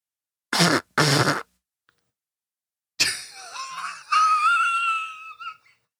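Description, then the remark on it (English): Two short, raspy, fart-like blasts, then after a pause a loud breathy whistle with several wavering tones sliding up and down, like a fart blown into a train whistle. No talking. “That's me farting into my train whistle.”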